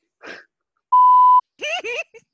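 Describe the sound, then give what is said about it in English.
A single loud, steady censor beep lasts about half a second, cutting off a person's name, with brief bits of a person's voice just before and after it. “If you say anything, I could just put a beep, like, when I end.”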